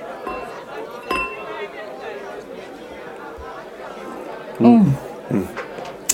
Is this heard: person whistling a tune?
no